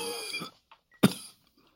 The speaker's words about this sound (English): She began to cough again.